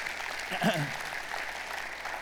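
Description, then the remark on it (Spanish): A church audience claps steadily in applause to the Lord, a dense, even patter of many hands that holds throughout, with a brief voice calling out early on. “Un aplauso al Señor si se lo merece, amén.”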